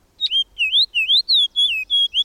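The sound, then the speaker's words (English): A fox sparrow sings a loud, lively run of clear whistled notes, about seven rising and falling slurs strung together quickly over two seconds, with no voices. “A loud, spirited song of whistled notes tells us the fox sparrow is at hand.”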